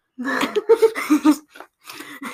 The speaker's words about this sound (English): You're not supposed to call me out when I want to take a moment to cough, but I don't want to do it in the mic or in front of you, so I just kind of duck in my shirt a little. Yeah, you're hiding the vampiring the ugly cough.